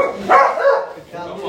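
Dogs barking: a quick cluster of loud, overlapping barks that trail off briefly, then pick up again more quietly at the end.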